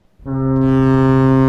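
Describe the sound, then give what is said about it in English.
A long bell ring sound effect: a single loud, low, buzzy tone with rich overtones kicks in abruptly and holds steady without fading. No one speaks over it. “I'm ringing that bell for Michelle.”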